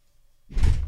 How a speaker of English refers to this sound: Front door going. It's one of those days.